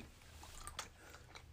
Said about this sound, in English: There really isn't another gum out there that you can get this type of crunch from.